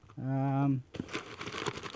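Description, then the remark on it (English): A short voiced hum gives way to loud crinkling and rustling of packaging paper as a Warner Home Video parcel is unboxed up at the microphone. The parcel holds a Blu-ray of Batman and Superman: Battle of the Super Sons. The irregular crackly texture continues for about a second. “Get it up to the microphone so podcast listeners can hear a little, you know, a little ASMR such in here.”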